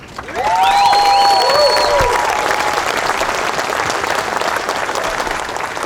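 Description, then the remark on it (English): A large crowd bursts into loud, sustained applause for each other, with a few shrill whoops and whistles rising over the clapping early on before it settles into steady clapping. “So it would make me super fucking happy if everybody clapped it up for each other.”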